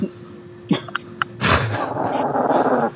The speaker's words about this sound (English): Oh, I hear a growling dog. I hear that.